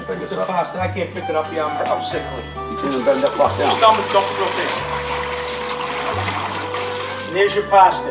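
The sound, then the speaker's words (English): Boiling water from cooking capellini pasta gushes into a strainer in a steady, rushing pour that starts a few seconds in and continues to the end, with voices talking and a low hum underneath. “Strain it, and we'd have here. So we're gonna strain it in a minute. But Joey's gonna dump the water right into here.”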